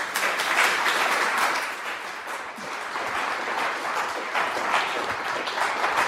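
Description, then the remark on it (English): An audience applauds steadily to welcome a speaker to a talk on John F. Kennedy and the race to the Moon. Many hands clap in a dense, sustained wash of sound at a fairly constant level for several seconds, with no voices over it. “Please join me in welcoming our speaker”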